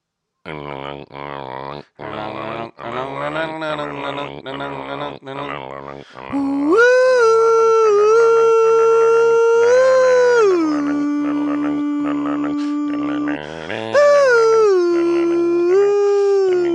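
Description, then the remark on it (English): Someone hums a TV theme tune: first a quick, pulsing rhythmic bass line, then a loud, sustained melody that swoops up and down in long held notes, with no other sounds. “When that theme tune come on, and we can't sing it, obviously, really, you can try and hum it.”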